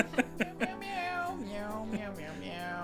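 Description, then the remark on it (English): A person imitates a cat, giving three quick, clipped meows followed by a long, wavering, sing-song meow that slides up and down in pitch, clear with no other talking. “Cat song now. Went from sound like a train to a cat.”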